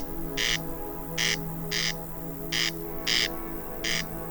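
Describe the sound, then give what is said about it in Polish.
A corncrake calls repeatedly, dry rasping double notes, crex-crex, repeated in a steady rhythm with short pauses, fairly loud against a faint hum of background noise and no voices. “Głos derkacza słychać w czerwcu, do początku lipca, a potem już derkacze milkną.”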